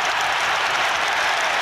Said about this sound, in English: Okay, so the first half continued, and then there were some cheers because this happened.